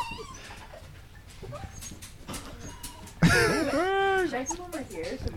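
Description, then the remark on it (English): An excited dog lets out a loud burst of high, wavering whines and yelps, lasting about a second, over a murmur of background chatter. “Those are some very happy dog sounds.”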